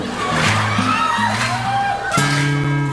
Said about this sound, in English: That clapping's messing my head up, man. I appreciate it. You're welcome. But I was trying to think of the next line. I'm like, all I hear is clapping. Offbeat clapping.